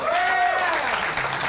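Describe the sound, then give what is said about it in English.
A crowd applauds steadily throughout as comedian Jimmy Dunn is introduced at a live comedy show, a dense wash of clapping with a brief whistle or cheer rising over it near the start. “That's where you applaud.”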